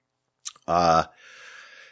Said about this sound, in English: That's a solo podcasting sip of water.